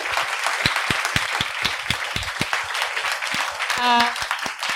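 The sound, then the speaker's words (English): A live show audience applauds steadily, dense overlapping claps, with a brief whoop or cheer rising near the end. “can we all give Ned a round massive, of applause”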